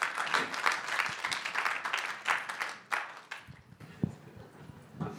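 An audience breaks into steady applause, dense overlapping claps that stay fairly loud for about three seconds, then thin out into scattered claps and a few isolated hits before fading.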